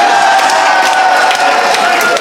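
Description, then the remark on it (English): An audience bursts into loud, sustained applause, dense clapping mixed with cheering and crowd voices, steady for a couple of seconds with no pause. “How did that get a round of applause?”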